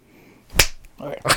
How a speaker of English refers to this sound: I'm going to need a new clap sync, too, as well, bud.